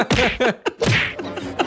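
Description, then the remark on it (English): A rapid string of punch sound effects depicting Bozo punching the clown, about six sharp whacks and thwacks landing in quick, uneven succession, loud with no talking over them. “So that's called Punching the Clown.”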